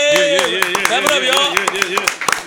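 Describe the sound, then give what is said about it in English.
Irregular, sharp claps of a small round of applause ring out over a sustained voice calling out, lasting a couple of seconds, as a host welcomes a guest, called a Philly legend. “Round of applause for my man.”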